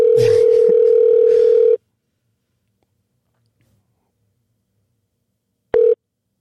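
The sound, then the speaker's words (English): A loud, steady telephone ringing tone from an outgoing call sounds for nearly two seconds, falls silent for about four seconds, then starts again briefly at the very end. “It seems loud, right? But I think it's gonna be fine for the audience. Just the ring.”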